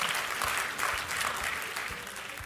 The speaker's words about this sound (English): Come on, give the Lord a hand clap, a shout, and an amen.